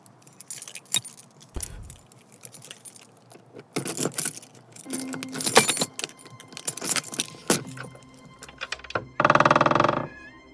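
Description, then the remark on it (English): Pass keys jangle and scrape, with metallic clinks and rattles as they work in a door lock, followed by a brief louder rattling burst near the end. No one speaks. “You see, I have pass keys to all the doors.”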